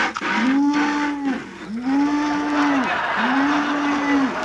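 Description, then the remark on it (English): A cow moos three times in a row, each call a long, drawn-out low moo of about a second, loud, with short pauses between and a steady background hiss. “the cow is milked already.”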